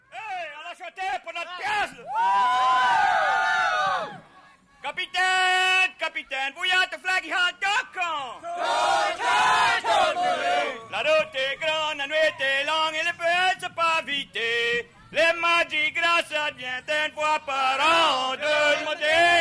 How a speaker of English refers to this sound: And it's a stunning performance of call and response between the lead singer and the whole chorus.